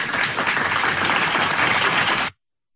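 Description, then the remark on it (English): A crowd applauds in a dense, steady burst of many overlapping claps, loud and even throughout, then cuts off abruptly after a couple of seconds with no voices present. “So definitely this couple deserves an applause.”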